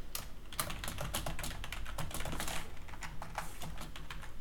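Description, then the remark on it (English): Rapid, irregular clicking of keys on a computer keyboard, a steady run of taps over a low background hum, with no voices. “He's typing.”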